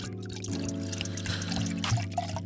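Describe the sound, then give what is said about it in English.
Cognac pours steadily into a glass for a couple of seconds, a continuous gurgling trickle with a faint low hum in the background and no talking. “Just pouring up.”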